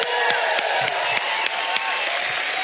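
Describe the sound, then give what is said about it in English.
An audience cheers and claps together, a dense steady wash of applause with sharp hand claps popping through and high whoops and shouts rising over the crowd noise. “So can we whoop it up for a second?”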